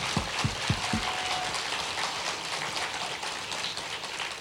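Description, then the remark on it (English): A crowd applauds a speaker who has twice survived cancer, a steady, dense patter of clapping that holds at an even level for the whole stretch, with a few low thumps near the start and no voices. “I'll pass your applause on to my doctors and the researchers who've made that possible.”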